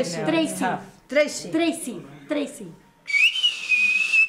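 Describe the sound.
A voice speaks briefly, then a name is whistled in the Silbo whistled language: one sustained, high, piercing whistle that rises sharply, then glides and wavers gently for about a second.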